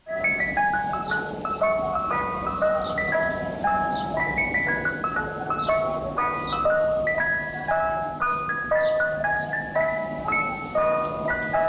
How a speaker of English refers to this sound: and the guarantee that no matter where you are in the city, no matter the time of day, from East New York to Chelsea Piers, you can hear the Mr. Softy jingle.